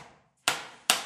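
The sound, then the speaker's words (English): Two sharp mallet strikes as artist Thaddeus Mosley sculpts in his studio, hammering a chisel into a big block of wood, evenly spaced about half a second apart, each ringing briefly before fading, with wood shards falling into a pile; no voices. “What you are hearing is Thad hammering a chisel into a big block of wood, and there are shards of wood falling into an accumulating pile at his feet.”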